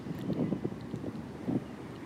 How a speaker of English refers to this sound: Now it's summer. It's quite windy, although the wind is abating now in the evening.